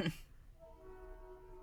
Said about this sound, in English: Tell the train to get out of the sound booth. I mean, it's like right behind me. It's like, Train, come get on. Get out of here. We're trying to record.